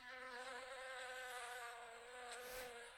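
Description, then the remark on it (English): A bee buzzes steadily and continuously, its droning hum holding an even pitch for the whole stretch, with no voices present. “I hate bees.”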